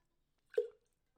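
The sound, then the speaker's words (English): A single quick, wet swallow from a sip of water: a soft plop-like gulp with a short low tone, brief and fairly quiet, surrounded by silence with no talking. “And take a sip of water.”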